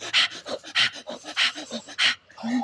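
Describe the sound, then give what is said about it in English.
A person pants heavily, with loud, breathy gasps coming in a quick, steady rhythm of about two per second and no talking. “Can't let go of the panting, man.”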